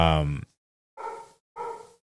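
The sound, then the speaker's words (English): An excited dog barks three times in quick succession as someone pulls into the driveway, starting with a longer, drawn-out bark followed by two shorter, sharper ones, with brief silences between them. “There's a, I mean, dogs. Yeah. They're excited.”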